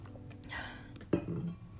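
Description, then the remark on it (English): Drinking water from a large Hydro Flask insulated bottle: a soft slurping sip, then a dull clunk as the bottle is set down, all quiet with no talking. “Cheers with my massive hydro flask.”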